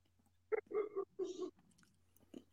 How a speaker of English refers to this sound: I heard that. Oh, what'd you hear? The dogs barking. they're from all the way across the lake. I mean, sound travels over the lake. Yeah, they're all the way across the lake, way behind me here, like right around here somewhere.